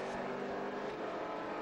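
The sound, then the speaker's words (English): Racing sports car engines roar steadily on a track during an IMSA Continental Tire Sports Car Challenge race, a dense, continuous mechanical drone with a high whine on top and no clear single pass-by. No one speaks. “If it's got a roof, it's exotic, it's fast, it's noisy, and it's leery, it's here this weekend, racing under the IMSA banner with the Continental Tire Sports Car Challenge, the headline act today.”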